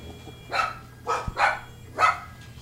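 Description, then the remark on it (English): Dogs bark in four sharp, mid-pitched bursts spaced unevenly over a couple of seconds, fairly loud against a low steady hum, with no one talking. The dogs are reacting to sirens on the TV. “Yeah, they're freaking out over the sirens on the TV.”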